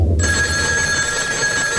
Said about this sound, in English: Ah, the phone. It must be one of my fans.